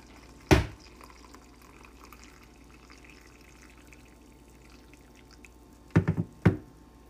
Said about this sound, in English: Did you figure that one out? That's a nice one. That was Mimi pouring tea into her teacup or coffee cup.